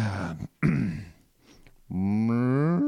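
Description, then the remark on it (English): A person imitates a cow mooing, with a couple of short, gruff lows followed by a long, loud, drawn-out moo that rises in pitch at the end. “…, you do it such a good cow”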